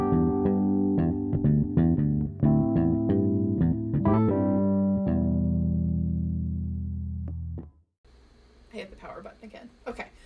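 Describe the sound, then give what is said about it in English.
A printer whirs through a run of stepped, buzzing motor tones that shift pitch every half second or so, holds a steady hum, then breaks into scratchy, rustling mechanical noise. “I'm so sorry that my printer keeps making noises.”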